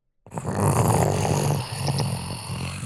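A deep, throaty growl from a huge alligator that has just emerged from a river in the moonlight rumbles in after a brief silence and keeps going for nearly three seconds, rough and steady with a slight dip midway before swelling again.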